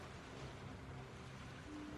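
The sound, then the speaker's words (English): A steady, continuous wash of ocean water outside, like surf, with a low rumble underneath and no one talking. “Did the sounds of the water outside and the sort of warmer temperatures remind you of anything?”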